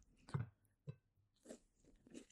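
A crisp bite into a warmed cookie followed by several crunchy chewing sounds, irregular and fairly quiet, with no talking.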